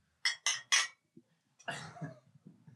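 Three quick, bright clinks of glasses touching in a toast, evenly spaced, followed by a short burst of clattering and rustling.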